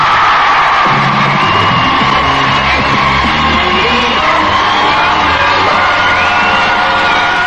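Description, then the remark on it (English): A large crowd on the North Thistle Beach at New Quay, at the 10th anniversary Radio 1 Roadshow on a sunny day, cheering and whooping continuously, with loud overlapping yells and shouts forming a dense, steady roar throughout, no single voice standing out. “The sun's shining, we've got a wonderful crowd,”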